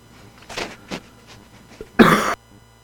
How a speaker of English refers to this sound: I'm getting ready to cough.